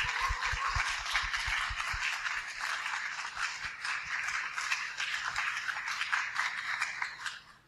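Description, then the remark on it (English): An audience applauds the panelists of a panel discussion steadily for several seconds, a dense crackle of many hands clapping at once, with a few heavier thumps early on and the sound easing slightly toward the end. “I'd love to invite, a round of applause for all of our panelists here.”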